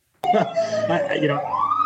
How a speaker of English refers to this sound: Sorry, I've got a siren right behind me.